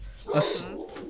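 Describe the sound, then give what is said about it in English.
A dog named Zephyr lets out a single sharp, loud bark, rising quickly and fading within half a second over a low background murmur. “Zephyr starts barking.”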